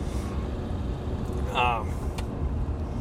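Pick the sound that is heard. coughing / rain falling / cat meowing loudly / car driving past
car driving past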